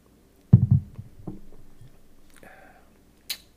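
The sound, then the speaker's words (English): Sipping of an 80-proof bourbon: a few soft low bumps as the glass meets the lips, a quiet slurp and swallow, then a small click at the end. No one speaks. “Okay, well, let's take a sip of this, see how it goes in the palate.”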